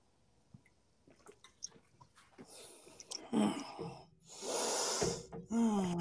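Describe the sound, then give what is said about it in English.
Faint clicks and gulping swallows as a shot of Japanese whiskey is downed give way to a few loud, breathy gasps and a strained, throaty exhale, with no talking. “That's a warm feeling, that whiskey, let me tell you right now. Brutal.”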